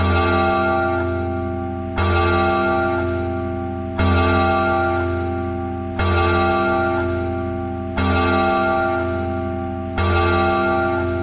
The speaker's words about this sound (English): The bell struck 12.